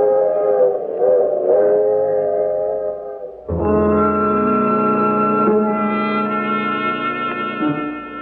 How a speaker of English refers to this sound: In Sioux Falls, I watch the train continue on to New York.